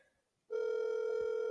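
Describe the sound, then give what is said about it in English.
After a brief silent moment, a steady electronic ringback tone of an outgoing phone call starts and holds at one even, mid-pitched level, loud and unbroken, with no voices. “Call them. Okay, will they pick up?”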